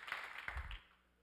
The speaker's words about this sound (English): If you love the Lord, give him one more hand clap of praise.